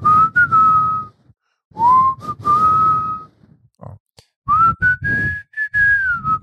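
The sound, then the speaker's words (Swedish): A person whistles a slow, sustained melody in three long phrases, clear and close, with gliding notes and brief pauses between, a short spoken word slipped into one gap. “Kan du vissla …?”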